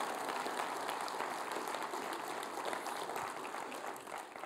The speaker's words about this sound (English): If you're going to chase Him, give the Lord a big round of applause.